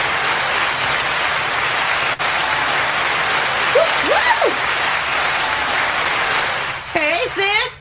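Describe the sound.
Sustained, dense hand clapping fills the whole stretch like a steady wash of applause, holding at an even loudness before voices cut in briefly near the end.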